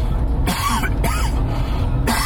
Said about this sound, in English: I got to cough again.